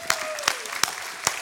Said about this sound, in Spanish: Dios se merece un aplauso por eso.